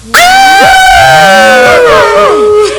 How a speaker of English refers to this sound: And the crowd goes wild!